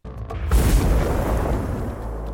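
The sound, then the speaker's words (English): A single massive coal mine explosion at the Mount Kembla coal mine, Australia, in July 1902, amid dangerous methane gas levels, erupts with a sharp crack, then gives way to a deep, heavy rumble that rolls on loudly for a couple of seconds, with no voices; heard 11 kilometres away. “the terrible events of July 1902 at the Mount Kembla coal mine, which began with a huge explosion heard 11 kilometres away.”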